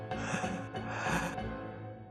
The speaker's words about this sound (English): Panic set in and Quinn gasped for air.